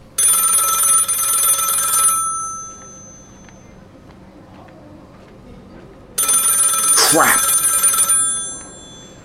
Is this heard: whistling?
no